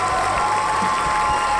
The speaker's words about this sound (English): Paul, can we have some raucous applause?